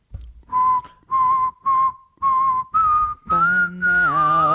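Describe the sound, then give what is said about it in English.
Breathy, airy attempted whistling made by sucking air in: five short, hissy bursts around one pitch, then a longer wavering tone that grows fuller and slightly buzzy, with no talking. “It probably hasn't come up because I'm not going to say I'm fully ashamed of my inability to whistle”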